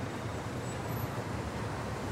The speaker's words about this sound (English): And sometimes I even like the sound of traffic. It's unbelievable. Even though it really isn't a nature noise.